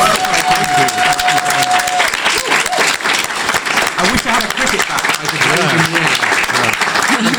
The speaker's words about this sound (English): can we have a big round of applause for David James?